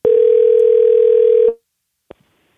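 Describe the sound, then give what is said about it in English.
A steady telephone dial tone hums loudly for about a second and a half while a call is being placed, then cuts off, followed by a brief faint click from the line. No one speaks. “So now it's time for a segment of the podcast called Phone a Friend, where we do just that.”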